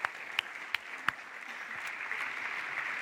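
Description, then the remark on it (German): Audience applause for two performers: a steady wash of many hands clapping, with a few sharp louder claps standing out near the start, and no voices over it. “Applaus für die zwei.”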